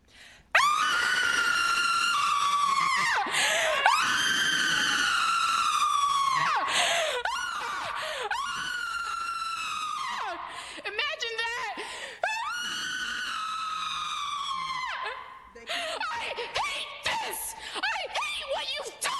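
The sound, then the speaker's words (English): A person screams loudly and continuously, in long sustained bursts with brief breaks for breath, the raw voice straining and wavering with nothing else audible. “So I am going to spend the next minute screaming, because that is what is going on in here.”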